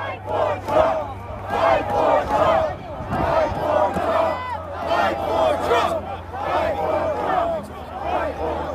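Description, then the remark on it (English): A large protest crowd on January 6, 2021, under gray skies, presumably near the White House, roars continuously, many voices shouting and yelling over one another in a dense, steady din, with a low constant hum running beneath the noise. “In this video, which I first saw on the day he posted it, almost in real time, Guangcheng stands under a gray skies with a much larger crowd, presumably somewhere near the White House.”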